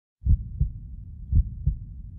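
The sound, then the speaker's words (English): A heartbeat heard through an Echo digital stethoscope: two deep, muffled lub-dub pairs, low-pitched thumps repeating about once a second over a soft rumbling background, with no voices. “When you hear with Echo's digital stethoscope technology for the first time, ooh, wow, you experience how a stethoscope was truly meant to sound.”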